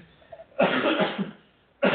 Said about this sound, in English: When I cough like that, you have to talk.